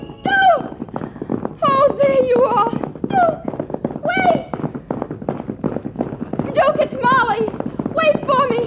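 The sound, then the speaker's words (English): Horse hooves clip-clop in a quick, steady rhythm throughout, with excited voices calling out over the hoofbeats. “You darn horse, shift into high or something.”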